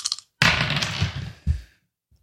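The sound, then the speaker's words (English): Dice clatter and tumble across a tabletop for over a second as a player makes a craft roll in a game, a brief rattle first, then a steady rolling rattle with a sharper knock before settling into quiet. “The zilch on the dice.”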